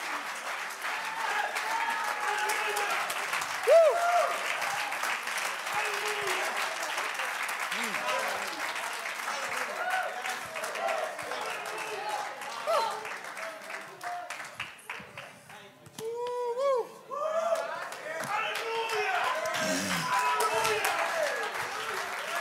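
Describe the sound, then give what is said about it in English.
An audience at a church service claps their hands unto the Lord in a dense, steady wash of applause lasting the whole stretch, with voices calling out and murmuring underneath and a brief dip in the clapping partway through. “Come on, let's clap our hands unto the Lord and magnify.”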